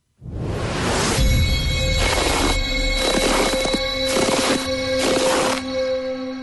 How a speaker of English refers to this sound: Here is your third and final set of Footsteps in the Snow for today with Foot Solutions.